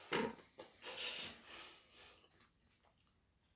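Airy breathing right into the microphone, a few soft exhales and sniffs of rushing air over a few seconds, fairly quiet, with no talking.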